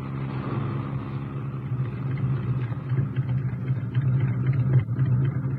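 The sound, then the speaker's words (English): A car engine runs steadily, a low droning rumble with a hum that swells slightly louder toward the end, as the car drives up to large gates. No one speaks. “Yes, that's the real reason we took the car.”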